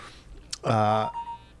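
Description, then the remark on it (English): An iPhone's text message alert sounds once: a brief click, then a steady, bright electronic tone lasting about half a second that fades into a faint ringing tail. “And when you have an iPhone, a little noise happens when you get a text.”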